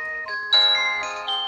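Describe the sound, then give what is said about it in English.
Bright synth-like music plays through the small, tinny speaker of a 7 Plus phone set at a distance from a mic, a few sustained chord changes with almost no bass, steady, with no one talking. “Okay, I'm gonna try and put the phone roughly in the same distance from the mic. This is the 7 Plus.”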